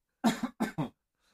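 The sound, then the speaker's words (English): A short burst of loud coughing: one double cough followed by two quick coughs, roughly a second in all, with silence after and no talking. “I had to cough.”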